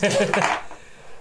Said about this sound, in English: It's only 3. we're rolling my Borderlands dice, and it's the Borderlands logo is the 1 and Claptrap is the 6.